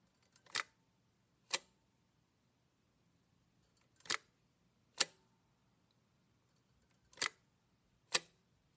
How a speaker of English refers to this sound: And here's the shutter sound of an old Kodak tourist camera, which has a flat front that, when you pop it open, expands out with a lens on the end of a bellows.